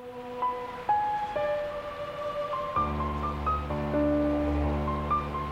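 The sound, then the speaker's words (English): Gentle water lapping and washing steadily in the background, blended with sustained, droning musical tones and a deep low hum that swells in partway through; no one speaks. “Listen to the water.”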